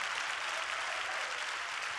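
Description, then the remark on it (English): A crowd claps steadily in praise to the Lord, many hands blending into a dense, continuous wash of applause that holds at an even level throughout, with no voices standing out. “Come on, clap your hands and give praise to the Lord.”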